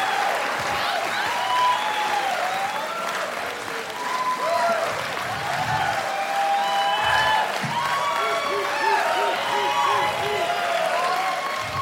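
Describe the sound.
A live show audience claps steadily for the whole stretch as a guest is welcomed onto the stage, a dense even roar of applause with whoops and cheering voices rising over it now and then.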